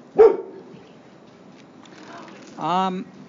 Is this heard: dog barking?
yes